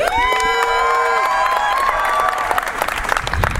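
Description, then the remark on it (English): A crowd applauds and cheers for a boy about to read a poem, steady clapping mixed with high-pitched whoops and shouts, loud, continuing throughout and thinning slightly toward the end. “Please give this boy a round of applause.”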